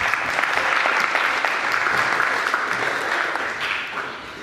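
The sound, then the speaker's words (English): A crowd applauds steadily for several seconds, a dense, even wash of many hands clapping that holds strong before easing slightly toward the end. “Give this person a clap.”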